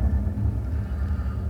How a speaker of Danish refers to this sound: De der flyvemaskiner, de går ret kraftigt igennem. Ja, yeah, so what? Det gør der ikke noget. Lad dem være i fred. De forstyrrer lidt.